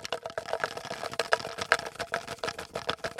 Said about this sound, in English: I put all the names in a little jar here, and I'm going to shake that jar, and you'll be able to hear it. And when you tell me to stop, I will empty those pieces of paper and open one up.